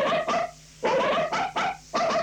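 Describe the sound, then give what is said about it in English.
A dog barks about six times in quick, uneven succession, loud, with short pauses between the sharp yaps and no one talking. “Why is it dogs?”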